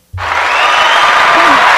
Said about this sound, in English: There we go. Here we go. A round of applause.